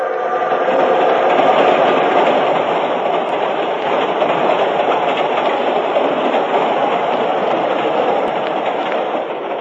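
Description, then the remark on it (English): A moving train rattles and clatters steadily along the rails, a loud, continuous rumble with rhythmic clacking that stays constant throughout, with no voices. “Let's get off while the train's still moving.”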